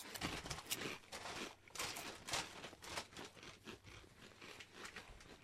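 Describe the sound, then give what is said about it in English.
Crunching of jalapeno chips being chewed, a steady run of crisp, irregular crackling bites with no talking over them. “Good crunch. They're very good.”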